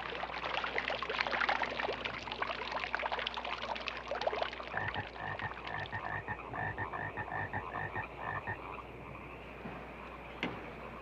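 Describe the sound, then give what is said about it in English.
A dense chorus of many frogs croaks continuously outdoors next to a lake, many overlapping calls blending into a steady, buzzing din, with a run of rapid rhythmic pulses standing out midway before easing slightly. “There's so many frogs on this island, or I don't even know if it's an island next to this lake.”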